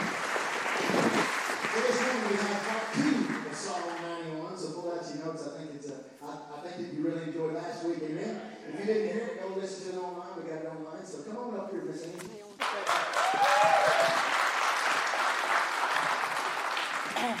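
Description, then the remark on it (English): An audience bursts into loud, steady applause, then a voice speaks over fading clapping before a second, even louder wave of applause swells and carries on to the end. “we got to give y'all applause for everything that we did.”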